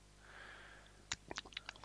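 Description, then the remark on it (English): A soft, airy slurp of someone sipping a gingerbread-flavoured gin infusion, followed by a quick run of wet mouth clicks and lip smacks as they taste it. No one speaks. “Just taste it now on the podcast for us. Okay, let's have a little sip.”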